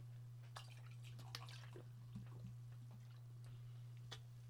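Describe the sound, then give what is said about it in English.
A drink being poured: quiet liquid splashes and little clinks trickle irregularly for a few seconds over a steady low electrical hum. No one speaks. “Ich gieß mir mal ein.”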